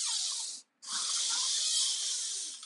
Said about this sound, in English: excuse me here, the door's about to be loud.